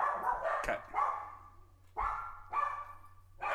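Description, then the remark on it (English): Dogs bark at the door as a pizza delivery arrives, in short, repeated bursts with brief pauses between them, sounding somewhat muffled over a low steady hum. Nobody speaks. “So if you ever hear our dogs, they're usually something at the door, or they just want to bark because they love barking.”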